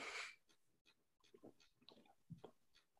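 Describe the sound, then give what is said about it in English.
An airy slurp of beer at the start, followed by soft wet mouth clicks, swallowing and quiet breaths as someone takes a first sip of Good City Audacity 2021, a barrel-aged quad aged in rum and port barrels, with no talking. “Nice barrel aged quad in rum and port barrels. Here's the first taste.”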